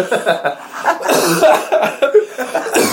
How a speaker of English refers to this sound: Oh, Jesus. Oh. You okay? Yeah, that was a hard cough.